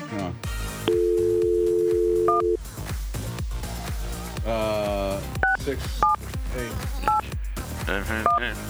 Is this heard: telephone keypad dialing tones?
yes